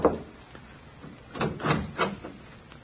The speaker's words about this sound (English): I knocked on the apartment door.